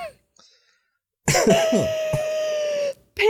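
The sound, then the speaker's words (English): A loud coughing fit while laughing: a rapid string of harsh, rasping coughs with a strained wheezy tone, a brief gap, then one more cough starting after a quiet opening. “Excuse me while I cough myself to death and laugh.”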